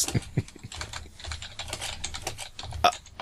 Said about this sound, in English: I can't type and speak at the same time, I was told.